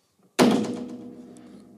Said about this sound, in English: Fucking phone just fucking goddamn spiked into the table every time you fucking put it down.